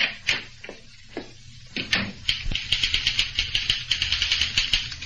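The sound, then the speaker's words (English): Typewriter keys clack in sharp, dry strikes in the small waiting room of Fantas and Arbogast Advertising, scattered and uneven at first, then settling into a quick, steady run of thumping keystrokes that grows busier toward the end. “The typewriter thumps louder.”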